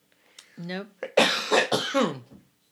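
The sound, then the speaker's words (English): A person stifles a cough, starting with a strained, voiced hum and then several muffled, breathy throat-clearing bursts in quick succession, moderately loud. “No, I'm trying really hard not to cough”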